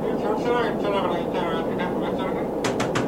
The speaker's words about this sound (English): It's night aboard a commercial jet airliner aloft high in the sky.